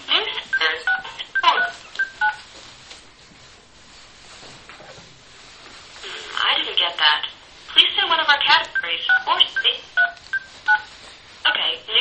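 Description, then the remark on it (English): Touch-tone telephone dialing: bursts of short, steady beeping tones in quick sequences, separated by a quiet stretch, with faint background chatter and a phone-line voice murmuring between the keypresses, as a toll-free automated information line's menu is navigated by keypad. “You don't need the one on here like cell phones, right? No, you just dial the area code and the number.”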